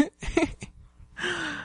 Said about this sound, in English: Oh, it's funny because I could just hear your snoring.